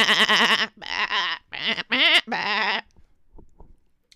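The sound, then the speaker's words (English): Several loud, wavering sheep bleats come in quick succession, filling the first few seconds, followed by faint scattered rustling and quiet. “Leaving her 10 sheep. 10 sheep. Will these sheep come back in the story?”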